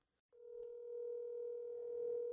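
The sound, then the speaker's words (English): A steady telephone tone sounds as a call is placed, after a brief silence, holding one unbroken pitch for about two seconds with no talking, then cuts off abruptly after a faint click. “Call her, put her on the podcast.”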